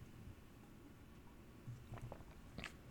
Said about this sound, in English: Let me just take a sip of water and bear with me here for a moment.